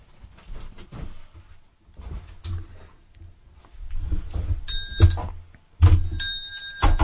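A small bell is rung twice behind the scenes of a George Takei recording, each time a bright, ringing tone with sustained high harmonics, following some low thumps and handling noise with no one speaking.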